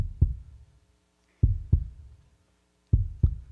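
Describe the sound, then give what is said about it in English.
A heartbeat thumps steadily in deep, muffled lub-dub pairs, about three beats with short gaps between, moderately loud with no voices. “Like an orchestra, every piece of creation singing the same song, tapping the same beat, like a healthy heartbeat.”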